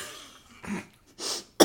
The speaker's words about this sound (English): Sorry, I'm choking on my saliva. Ready? Yeah. You ever just, like, breathe and just your body's like, no? You ever been bad at breathing?